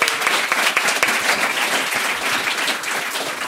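An audience claps steadily, a dense wash of many hands applauding, loud and sustained through the whole stretch without any voices standing out.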